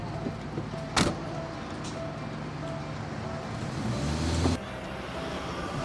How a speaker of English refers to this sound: You get in and shut the door